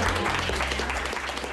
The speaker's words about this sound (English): Can I give another round of applause to all of the speakers?